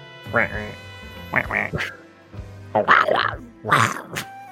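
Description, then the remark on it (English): A person imitates the cartoon duck Donald Duck in a raspy, quacking voice, in several loud, garbled bursts with short pauses between them. “Is that your duck voice?”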